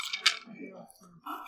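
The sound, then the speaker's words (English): A quick, bright clatter of dice tumbling across a tabletop, sharp, fading within a moment before people start talking. “It's just fun to roll these dice.”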